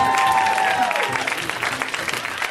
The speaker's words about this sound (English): Put your hands together. Get ready to clap. Put your hands together. Put your hands together. That is the shittiest round of applause.